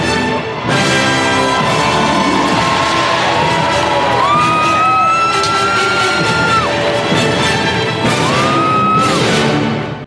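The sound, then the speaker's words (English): A huge crowd of Washington Nationals baseball fans in DC roars and cheers continuously as the 2019 World Series champions are welcomed to the stage, with loud yells, whoops and shrill whistles rising above the dense, sustained wall of noise. “Make some noise. Let's show them what DC sounds like.”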